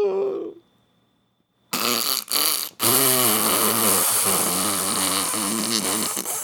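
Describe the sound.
A voice makes a long, loud, buzzing fart imitation after a short sputter and a brief pause, the raspy sound wobbling and flapping for several seconds.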